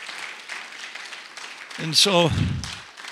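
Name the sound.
audience clapping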